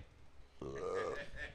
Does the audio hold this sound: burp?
yes